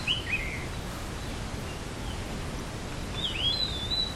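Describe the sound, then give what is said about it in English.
Two brief bursts of high bird chirps, one at the start and one near the end, sit over a steady outdoor hiss of wind or rustling, soft. “Sound of the birds.”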